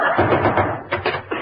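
George knocks three firm times on the door of Gracie's house, whose doorbell doesn't work, the knocks spaced unevenly near the end, following a stretch of busy, muffled noise that may include voices.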